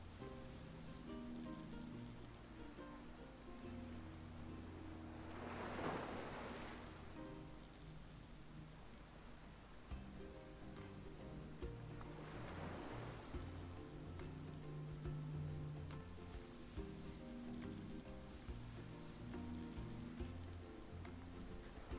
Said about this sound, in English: Palm trees rustle in the soft ocean wind.